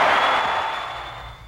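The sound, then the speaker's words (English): A wrestling crowd cheers as Hogan agrees to wrestle Andre at WrestleMania 3 for the World Heavyweight Championship, a loud, dense roar that washes over everything, then slowly fades over about a second and a half. No one speaks. “So when Hogan finally says that, yes, he'll wrestle Andre, well, and the crowd pops.”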